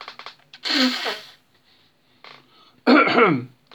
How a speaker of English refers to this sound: I've just got to blow my nose. Yeah. I'm very sorry about this.